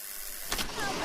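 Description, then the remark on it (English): A door buzzer sounds as a visitor is buzzed in, a steady electric hum that begins abruptly about halfway through and holds at an even, moderate level, over faint background noise. “Okay, I'll buzz you in.”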